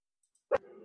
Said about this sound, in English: My dogs are going nuts. So that's all right.